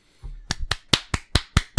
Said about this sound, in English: We're glad to see everybody here again. This live studio audience. Everybody clap so they can hear you.